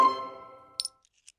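A game's chaos coin rings out with a bright metallic tone that fades over about a second, followed by a few light clinks as it is grabbed. No voices.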